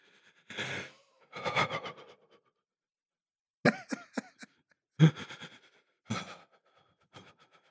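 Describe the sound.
A person imitates a big man's heavy, labored breathing: several loud, wheezy huffs and rasping exhales in an uneven rhythm, with short pauses between breaths and no talking.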